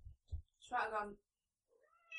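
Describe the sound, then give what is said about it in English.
A person mimics a cat with a drawn-out, nasal meow, followed by the start of another rising meow. A couple of soft low thumps come before it. “She went meow, meow, meow, meow, meow.”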